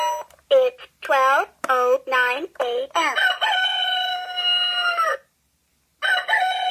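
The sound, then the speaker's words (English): A talking alarm clock plays a loud rooster crow alarm: a quick run of short, bright notes swelling into one long drawn-out crow, then a brief pause before the call starts again. “And this is what the rooster crow sounds like.”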